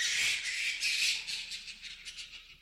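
A bat call: shrill, high-pitched chittering squeaks in a rapid pulsing series, fairly steady at first and gradually thinning out toward the end, with no voices.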